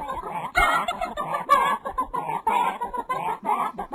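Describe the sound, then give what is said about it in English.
A flock of chickens clucks and squawks continuously, overlapping bursts of loud, nasal calls, with no pauses and no voices. “The fucking clucking chickens.”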